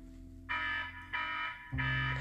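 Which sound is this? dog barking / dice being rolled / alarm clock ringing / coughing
alarm clock ringing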